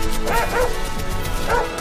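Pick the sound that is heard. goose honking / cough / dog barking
dog barking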